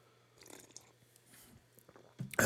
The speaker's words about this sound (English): As I slurp like a classy broad.